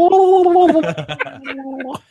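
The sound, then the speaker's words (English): A voice imitates the gurgling noise the putty henchmen made in the original: a strained, warbling tone that breaks into choppy, bubbling sputters before a final rising squeal, loud for about two seconds. “What about the noise that the putties made in the original?”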